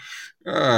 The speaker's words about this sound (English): What was that? It was a duck, actually. A duck? Yeah.